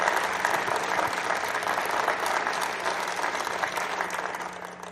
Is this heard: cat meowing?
no